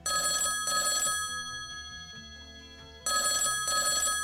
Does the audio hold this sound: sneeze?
no